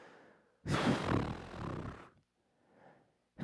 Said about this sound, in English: We don't have to spend a lot of time on it, but I feel this deserves a lot of heavy breaths for a second.